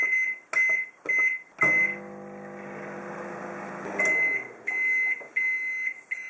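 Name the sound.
microwave oven beeping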